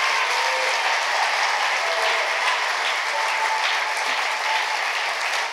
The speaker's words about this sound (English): Well done. Thank you. Let's give them all a massive round of applause.